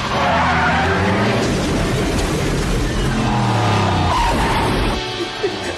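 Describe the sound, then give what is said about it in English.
Car tires skid and squeal loudly and continuously for about five seconds over a roaring engine as a man drives a car through a house, then cut off abruptly. “This man drove a car through a house, y'all.”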